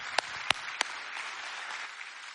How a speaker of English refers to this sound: Would you give him just a big round of applause?